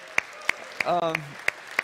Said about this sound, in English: Some of you don't even know why you're clapping, but a lot of you do, because